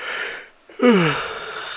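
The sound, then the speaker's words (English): A single yawn at about 12:45 in the morning: a breathy rush of air, then a short voiced groan sliding downward in pitch before fading into a long, airy exhale. No one speaks. “It's nearly 1 in the morning, so I'm fucking yawning.”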